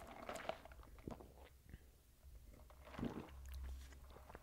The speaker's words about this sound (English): Let me take a sip.